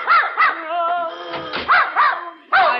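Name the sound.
dog barking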